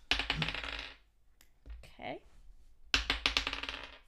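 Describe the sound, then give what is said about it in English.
Dice clatter across a hard tabletop in two busy bursts of sharp little clicks, one at the start and one near the end, with a faint brief voice in between; the dice are rolled with advantage for an arcana check in a game of Dungeons & Dragons, coming up 11. “could you go ahead and make an arcana check, please? oh dear, didn't expect a dice but roll you, in D&D.”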